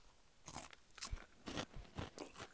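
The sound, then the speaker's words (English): Crunching of aged white cheddar cheese puffs from a large Costco bag, about five sharp, crackly bites in a steady chewing rhythm, with no talking. “Surprisingly crunchy, I must say.”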